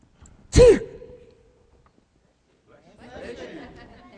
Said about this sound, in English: Bless you. I tell you, get blessed when you sneeze.